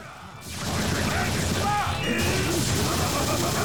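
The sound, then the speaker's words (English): A rapid, dense flurry of hand slaps, a "1,000-hand slap" move, bursts in after a brief lull and keeps going without pause, loud, with faint tonal sounds mixed underneath. “Yep, even bringing back the 1,000-hand slap, even though it's supposed to be only 100.”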